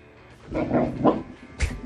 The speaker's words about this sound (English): The owner's trying to get a nap in here, right? Trying to sleep. The dog's like, I want to go for a walk. The dog's having none of it. And he's growling.